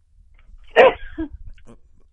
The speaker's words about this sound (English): Bless you.